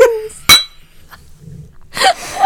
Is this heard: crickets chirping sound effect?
no